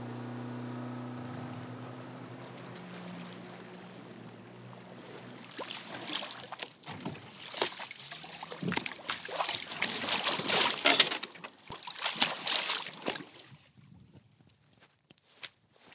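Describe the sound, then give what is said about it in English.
A boat engine drones low and steady, then water slaps and splashes loudly against the hull in irregular bursts as it crosses choppy water on the York River, heading from Gloucester Point to Goodwin Island on a breezy, warm day, before settling quieter near the end. “All right, we're heading out down the York River from Gloucester Point over to Goodwin Island to go check out some ghost forests on the island.”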